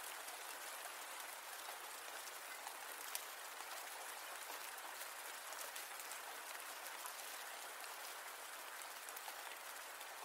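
Steady rain falls without pause, a dense, even hiss of countless drops spread across the whole clip, with no voices or other sounds breaking through.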